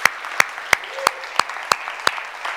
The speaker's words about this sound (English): And I heard a clap, and that will work well on a golf tournament, but let's give the Lord a clap for what just took place.